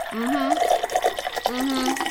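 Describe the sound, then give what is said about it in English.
A sound effect of wine glugging and pouring into a glass, a continuous gurgling stream whose pitch rises as the glass fills, lasting about two seconds. “First, actually, I'm actually just going to pour myself a glass of wine.”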